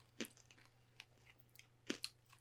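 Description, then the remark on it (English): Crunchy chewing of hard candy, with a few sharp cracking bites and softer mouth noises in between, no talking. “I'm going to eat these, but I like the back half.”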